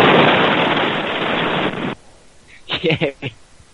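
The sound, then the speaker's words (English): A cartoon grenade explosion effect heard over a phone line: a loud, harsh burst of noisy roar lasting about two seconds that cuts off abruptly, followed by a brief voice. “They're using cartoon grenades to blow up the phone.”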